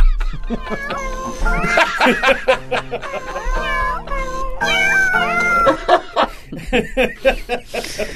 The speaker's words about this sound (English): How about cats singing happy birthday?